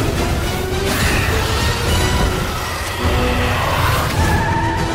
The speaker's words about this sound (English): There's magic. There's car chasing.